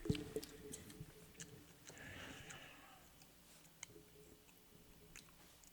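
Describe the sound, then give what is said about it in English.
Chewing with wet, squishy mouth sounds and small clicks, steady and irregular, with a brief burst of noise midway; fairly quiet and intimate. “are you gonna stop chewing?”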